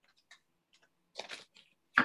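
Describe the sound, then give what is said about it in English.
Tarot cards being shuffled: a few light taps and flicks, then two brief papery riffling bursts, the second one louder. No one speaks. “I'm going to shuffle a little bit, and then I'm going to”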